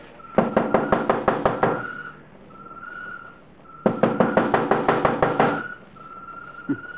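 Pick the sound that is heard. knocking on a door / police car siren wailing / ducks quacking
knocking on a door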